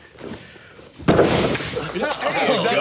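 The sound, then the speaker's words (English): A body drops onto a hard wooden floor with one loud thud, followed by rustling noise and people talking. “But no, it's just a made of wood, very hard floor that I kept falling and knocking the wind out of me.”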